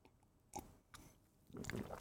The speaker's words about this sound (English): as I sip my coffee